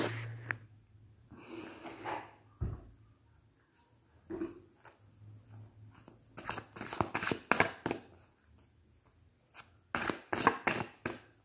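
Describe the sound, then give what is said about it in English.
A deck of cards being shuffled before a card is pulled: soft sliding and rustling at first, then bursts of rapid riffling flutters in quick clusters, with brief pauses between them. “I'm going to go ahead and pull a card at this time for the collective and put this down. So I may shuffle these cards.”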